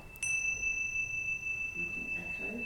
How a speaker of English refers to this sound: An echo, yep. Very good. Okay, what isn't in the sound of the bell? Fear, worry, anxiety, doubt, shame, guilt, bank balances, difficult neighbours, dodgy colleagues, crazy organisations you have to work for, white van drivers, it's not there.